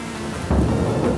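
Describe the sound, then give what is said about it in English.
Steady rain hisses throughout while a deep, loud rumble of thunder swells up about halfway through, with no voices present. “As stormy inside as it is outside”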